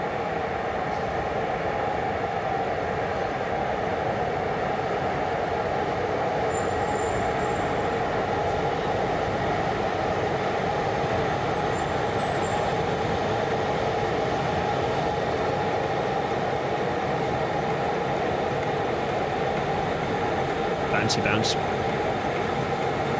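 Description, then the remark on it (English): A locomotive eases slowly up to a train, its steady low engine rumble droning for a long stretch before a brief metallic clank near the end as the buffers meet. “Bounce. Gently does it. We've all been here, we've all twiddled with the dial. Can you do it nice and smoothly?”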